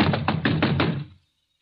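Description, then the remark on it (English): Five firm, evenly spaced knocks on a door by the police, loud, followed by silence. No one speaks. “Who's there? Open the door in the name of the law.”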